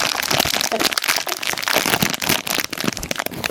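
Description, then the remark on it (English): Loud crinkling of a sweet packet as an extremely strong salmiak licorice sweet is pulled out, a dense run of crackly rustles lasting a few seconds with no one speaking. “By taking one of those out, popping it in your mouth. Shall I fetishise the taking out?”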